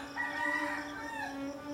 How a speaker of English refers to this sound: Seemingly earlier than yesterday, and probably a few breaths earlier than the day before, the rooster crows. And the sun isn't even cresting the horizon yet, which is saying something for this part of the country.